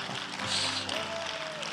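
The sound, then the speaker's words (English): An audience at Sunrise claps steadily for the campus pastor, a dense, even wash of applause that holds at a constant loudness for the whole short stretch, with a faint tone gliding through the middle. “And before I kick it over to him, yeah, you can clap for that.”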